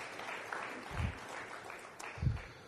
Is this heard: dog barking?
no